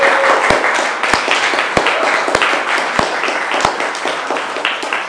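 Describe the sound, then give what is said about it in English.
A crowd applauds steadily, dense overlapping claps forming a continuous wash of sound, with a few sharper, louder individual claps standing out every half second or so. “Saw some people who were kind of woken up by the clapping.”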